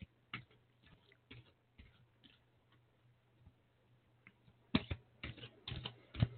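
Large cards being shuffled: scattered soft flicks and taps at first, then louder bursts of riffling clatter toward the end, with no talking.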